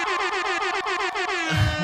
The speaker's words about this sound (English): Oh, baby. Throw an air horn on there.